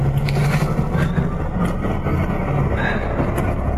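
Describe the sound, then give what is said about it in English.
A steady engine rumble fills the upper deck of a moving double-decker bus in Birmingham in the rain, heard from the front seat, with low droning hum and faint rattles throughout and no clear talk. “Comfortable up in the upper deck front seat studio.”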